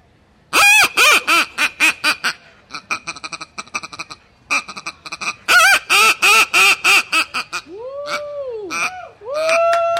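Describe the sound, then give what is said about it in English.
Someone imitates a honking goose with a waterfowl call held up close to the microphone: a loud, rapid series of harsh, nasal honks in bursts, then a few drawn-out, swooping clucks near the end. “You have a nice spread in front of you, a cup of coffee. You're with your son. Your dog's wagging his tail. And you're ready to call.”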